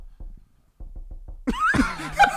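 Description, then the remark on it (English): A voice imitates a fart on a cloth couch that sounded like Morse code, like SOS, with a string of short, low, sputtering bursts, one pulse then a quick series, followed by loud laughter. “He farted, it literally sounded like this.”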